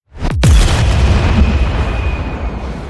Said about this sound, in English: I'll layer in like the sound of a screeching as an explosion goes off, just to get that extra little intrigue in the high end of an explosion. Here's an explosion sound effect. And here's a red-tailed hawk screech. Now, let's put them together.